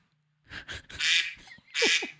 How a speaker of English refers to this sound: The ducks have spoken.